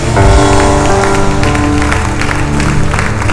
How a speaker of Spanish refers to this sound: Te digo, si eso es todo lo que tiene, aplaude. Aplaude al Rey.